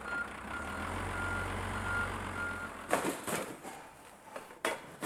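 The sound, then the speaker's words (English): A recycling collection van in Leicester idles with a low engine rumble while a steady reversing beep repeats, then the engine cuts out and sharp clanks and bangs of green recycling bags and bins being handled follow during a collection round. “There's going to be 16 vehicles like this going round Leicester picking up green bags.”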